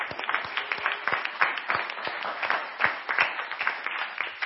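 A crowd applauds the ministry leaders for their work, many hands clapping in a dense, continuous patter of sharp claps that holds a fairly even loudness throughout.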